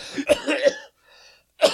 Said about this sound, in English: Yeah, I have this. He's I have this cough. COVID. He's COVID. I think he's got COVID.